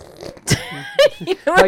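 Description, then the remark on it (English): A voice makes a quick, buzzy imitation of a zipper closing, like zipping up a Ziploc bag, a few short raspy bursts in under two seconds, fairly loud. “Zip it up right here.”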